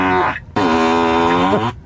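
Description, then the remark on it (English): A synthetic fart noise from a Tesla car's fart-sound feature plays twice: a short buzzy blast, a brief pause, then a longer, loud, low reedy rasp that bends downward in pitch at the end. No one speaks. “He found the fart noises too.”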